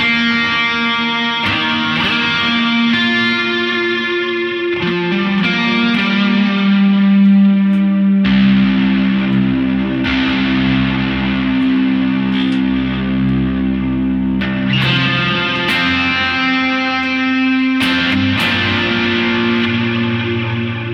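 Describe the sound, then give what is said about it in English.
A loud, slightly overdriven electric guitar, played through a Keeley Electronics echo pedal, plays sustained chords that change every few seconds, each strum trailing off in repeating echoes. No one speaks. “Let's add the echoes from Keeley Electronics.”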